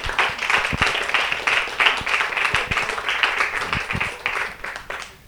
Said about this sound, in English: By the way, everything was delicious. And thanks to the cooks. And can we give them a round of applause?